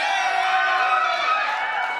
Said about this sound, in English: You know what I love about that? I can only hear the people in the front row, so I'm going to assume that everyone in the back row is still cheering.